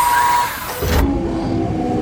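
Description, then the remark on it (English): A car engine roars and revs up as the vehicle surges off, a loud whoosh of power that settles into a steady high drone. No one speaks. “That premium package upgrade that I bought for this car sure has some surprising benefits.”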